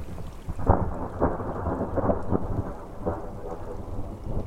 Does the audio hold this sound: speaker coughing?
no